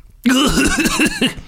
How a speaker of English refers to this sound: … gets up whilst coughing.